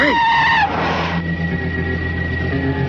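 A car skids around a corner, its tires letting out a loud squeal that bends downward, followed by a brief rushing burst and a steady engine rumble.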